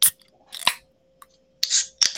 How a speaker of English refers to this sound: We are together today, cracking beers.